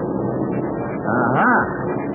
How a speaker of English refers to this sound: I can tell from the sound of the motors. Harry, those are Uncle Sam's planes singing a sweet tune.